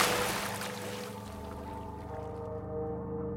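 A single splash as a person's body drops into liquid in the dark, a bright wash of noise that fades over about a second beneath a steady, low, humming drone.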